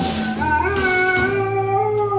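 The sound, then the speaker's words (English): A dog howls in a long, sustained, wavering tone that rises slightly and holds steady, loud and continuous for a couple of seconds with no one talking. “I love that dog already.”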